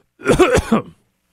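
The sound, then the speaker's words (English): A single fairly loud cough, a rough voiced burst lasting under a second, followed by silence. No one speaks. “I thought I was going to be really smooth and hit the cough button while I coughed, but then it got stuck, so we ended up with a little dead air for a minute.”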